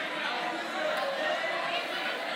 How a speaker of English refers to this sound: On the count of three, why don't you just yell out your favorite radio station to listen to? Because I don't listen to a lot of radio. I'm not super familiar. 1, 2, 3, go.